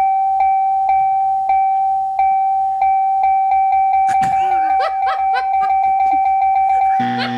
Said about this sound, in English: Okay, hold on. We have to let the tally bells catch up before you continue talking.